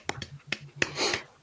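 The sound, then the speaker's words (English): A single person claps a handful of times, the sharp, quiet smacks landing at an uneven, unhurried pace over a low background hum. “I'm the only one clapping, but okay. I clapped.”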